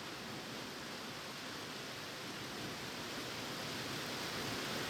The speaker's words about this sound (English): Here comes the rain.